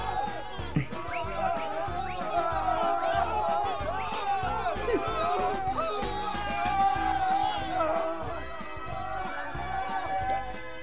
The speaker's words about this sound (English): Oh, they're cheering for me. It's my headdress.